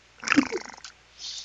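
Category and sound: animal, domestic cat meowing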